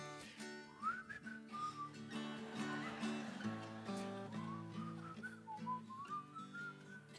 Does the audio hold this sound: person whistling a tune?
yes